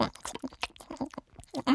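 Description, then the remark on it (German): Loud, wet smacking chewing, a quick run of irregular crunchy mouth sounds and lip smacks with no talking over it. “»Du warst das«, antwortete die Stimme, bevor sie in ein ziemlich lautes und schmatzendes Kauen überging.”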